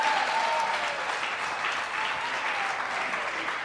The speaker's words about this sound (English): Yeah, give him a round of applause.